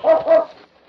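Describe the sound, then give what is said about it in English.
A dog named King barks twice in quick succession, fairly loud, and then the sound falls away into near quiet with no other voices present. “It was King's barking that called the sergeant's attention to the young Indian lying beside the trail.”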